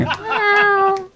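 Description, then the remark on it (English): A person's voice imitates a cat's meow, one drawn-out, fairly loud, whiny tone with a slight rise and fall, lasting just over a second. “I'm pretty sure that the cat would ring in right around then.”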